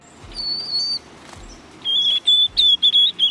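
A young white-throated sparrow practices its song, a whistled, wavering song: one long warbled note, a pause, then a run of shorter, slightly unsteady whistles, clear.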